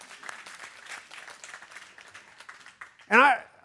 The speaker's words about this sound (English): You can applaud. That's a word.